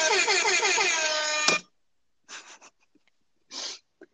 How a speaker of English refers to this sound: Air horn number two